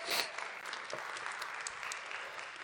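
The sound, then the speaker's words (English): An audience at Hill City claps steadily throughout for four readers coming up to read the book of Colossians, a dense, even patter of many hands at moderate loudness with no voices rising above it. “They're going to, give them applause.”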